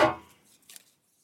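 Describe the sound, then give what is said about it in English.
A single sharp metallic clatter rings out and fades quickly, followed by a brief, lighter rattle of paper slips shifting inside a tin, with no voices. “So it's bits of paper in the tin. Yeah, you can hear the tin.”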